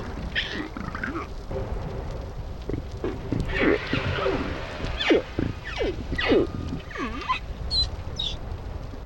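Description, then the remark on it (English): Low, rumbling whale grunts repeat in an uneven series, some sweeping up or down in pitch, with a few higher squeaky calls over a steady murky background hiss. “More grunting than whispers there, but kind of sounds a bit like my stomach when I haven't eaten.”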